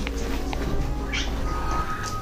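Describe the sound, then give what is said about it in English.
A female cat gives a few brief, soft meows, one slightly stronger chirp in the middle, over a steady low background hum with no talking. “Kitty! Are you hungry? She doesn't get food until later.”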